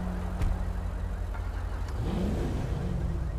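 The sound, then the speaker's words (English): A two-door black truck's engine idles with a steady low rumble during a police pursuit on Olympic Freeway, then revs up and accelerates as it takes off again, its pitch climbing midway before holding at a higher drone. It sounds fairly loud, with no voices. “He came to a stop and now he's going all over again.”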